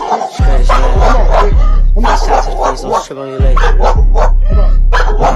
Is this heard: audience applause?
no